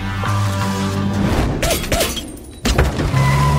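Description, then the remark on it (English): A single sharp gunshot bursts out over the steady rumble of a car engine, with some clattering, swishing noise just before it. No one speaks. “When you hear something that sounds like a gunshot, drive.”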